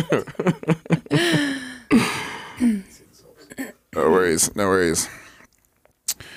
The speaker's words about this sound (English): It's okay to have a cough break.